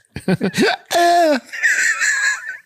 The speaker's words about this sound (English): Excuse me. The hiccup.